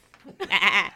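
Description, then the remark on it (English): A voice mimics a goat, letting out a loud, wavering bleat that quivers for about half a second, preceded by a few soft, breathy sounds, with no other noise. “You should roar song. Like a goat, though.”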